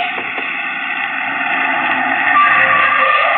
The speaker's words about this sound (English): But wait a minute. Around the curve, a car.